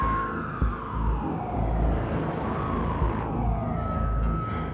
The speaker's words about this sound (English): Days later, that opportunity comes. It comes with the sound of sporadic sirens. The police are in the area. They are close.